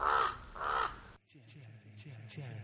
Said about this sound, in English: What's that? A raven. A raven approaches.